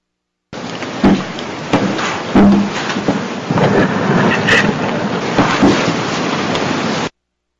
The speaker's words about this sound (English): You hear somebody walking on the floor, except the floor was carpeted.